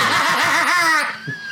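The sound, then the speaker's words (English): A car alarm blares with loud, warbling electronic tones whose pitch sweeps up and down in quick cycles, then fades into a thinner, steadier tone. “That was a creepy ass car alarm that just went off for no goddamn reason.”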